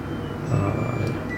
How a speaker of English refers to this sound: That's our washing machine. The washing machine plays. It sings for you. Yeah, it's so cute when it's done.